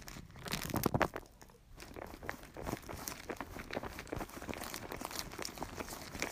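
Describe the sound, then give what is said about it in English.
Dry ramen noodles being mixed with their seasoning, a steady run of crisp crunching and crinkling with irregular sharp crackles and no voices, sounding a little like rain. “This is me mixing the ramen in with its flavoring.”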